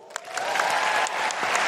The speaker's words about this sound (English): And before we close, I just want to say a huge round of applause to everyone here at Hamer Hall.